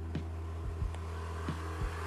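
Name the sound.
motorcycle engine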